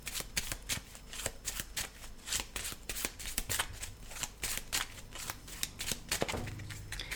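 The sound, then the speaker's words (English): The infection discard pile of a board game being shuffled, a rapid run of crisp riffling snaps and flutters that keeps going steadily for several seconds, with no voices over it. “In the discard pile and shuffle it.”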